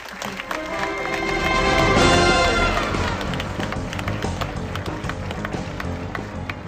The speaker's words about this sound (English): Guys, please enjoy it. A round of applause.